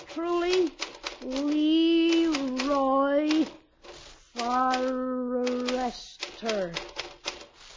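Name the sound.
typing on a typewriter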